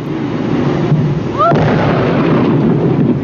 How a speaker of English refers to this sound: The whale exploded over an area of 800 feet. Blubber flew in all directions. A large piece totaled a car.